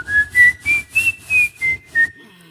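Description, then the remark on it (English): An audience whistles together in one sustained tone that rises and then falls, accompanied by about seven steady, loud rhythmic pulses, like claps or drumbeats. No one speaks. “Everybody whistle. Whistle.”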